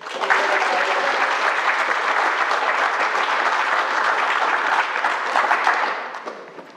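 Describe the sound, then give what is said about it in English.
An audience applauds steadily for several seconds, a dense, even wash of many hands clapping that holds at full strength before tapering off near the end. “And just one more time, please, let's hear it”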